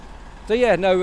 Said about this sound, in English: Now that's a unique squeaking sound from Leyland Brakes. That's a part of it.